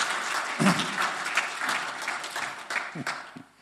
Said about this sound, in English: So a round of applause.